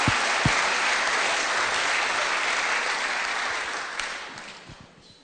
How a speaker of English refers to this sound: Give a massive clap to the Lord.